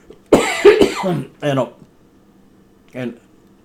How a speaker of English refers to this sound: I'm sorry, the coughing. I thought I was, that was one of the reasons I took a break, but it didn't seem to stop it completely.